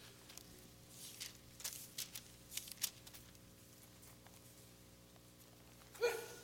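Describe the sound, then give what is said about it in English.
A single sharp sneeze bursts out near the end of a Bible reading from Acts, louder than anything before it, after several seconds of quiet room tone broken by soft, papery rustling. “Bless you.”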